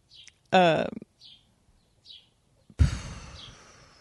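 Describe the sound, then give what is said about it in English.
A bird chirps a few times, short high tweets spaced about a second apart. A brief human vocal sound breaks in early, and a burst of breathy noise follows near the end. “We hear you, bird.”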